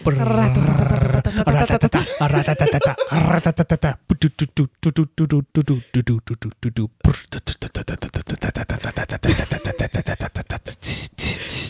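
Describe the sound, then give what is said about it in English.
A voice imitates a drum roll with a long, growling rattle of rapid pulses that breaks into choppy bursts, then rolls on loudly for about twelve seconds. “I think I had a few, but the main one was, drum roll.”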